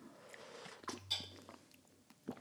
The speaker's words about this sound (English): I'm just going to take a sip of my tea here.